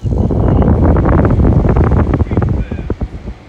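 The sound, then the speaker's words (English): An air conditioner runs on a Monday morning, November 7th, with a loud, steady whooshing roar, broken by uneven bursts and crackles, easing off slightly and turning choppier over the final second. “The soothing sound of the air conditioner on a Monday morning.”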